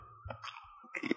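A can of Pringles being opened, with crisp crackling and crunching: a few short, bright bursts and clicks, fairly quiet, rising to a louder crackle near the end.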